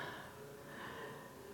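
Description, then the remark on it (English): A soft, breathy rush of air from someone breathing deeply and slowly in and out from the belly, steady throughout, with no talking. “Really breathe. Deep down from the bottom of your belly.”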